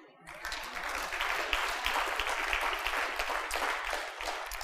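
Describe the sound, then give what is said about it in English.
An audience bursts into applause, a dense, steady wash of many hands clapping that starts abruptly and holds at a fairly loud level for several seconds, with no talking over it. “Don't clap too much.”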